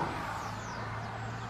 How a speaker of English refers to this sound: It doesn't look much to look at that today, and I suppose an awful lot of the people in their cars passing by there in the background, they'd say just another bush, but it isn't.